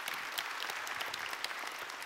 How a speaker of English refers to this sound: Would you guys welcome Witty and give him a round of applause?